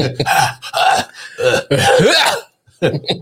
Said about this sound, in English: Let me clear my throat.